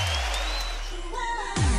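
A boxing arena crowd cheers in a dense, continuous roar with a thin whistle threading through, after a big right hand ends the fight between Dillian White and Derek Chisora. The noise stays loud throughout and swells heavier in the final moments.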